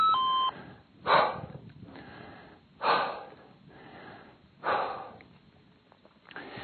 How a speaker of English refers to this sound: Yeah, I'm breathing. It's all about exhaling, getting that CO2 out of your lungs so you can make room for O2. Actually, it's a blend that you're trying to inhale.